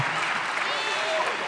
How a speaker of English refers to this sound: Happy birthday, Jesus. Come on, give Jesus another round of applause.